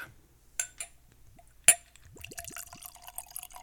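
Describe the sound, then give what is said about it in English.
A few sharp glass clinks ring out, including one bright, loud chime, followed by wine pouring steadily with bubbling glugs that rise in pitch as the glass fills. No one speaks. “Let's sip this bad boy.”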